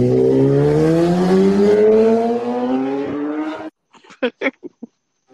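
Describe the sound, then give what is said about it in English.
A motorcycle roars past, its loud engine whine climbing in pitch for several seconds before cutting away, followed by a few short, sharp bursts. “What I was saying, that motorcycle cut me off.”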